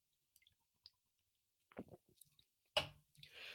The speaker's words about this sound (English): Hold up. We're going to take a little sip of the beer.